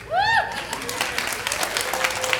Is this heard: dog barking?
no